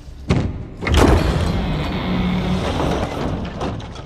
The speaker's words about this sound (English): Doors open. That's good sound effects. Good sound effects.